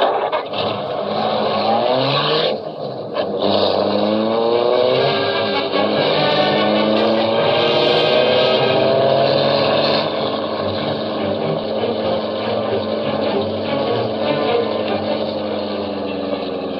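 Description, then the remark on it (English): A car engine races loudly and steadily as the car follows another car, its pitch climbing and surging as it accelerates hard, with a continuous roaring drone and no voices heard. “There, car of man we follow.”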